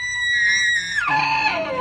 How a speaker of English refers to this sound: There's even an elk chorus, which is a chorus of bugling elk. And elk bugles are the stuff of Bud nightmare fuel. Listen to this.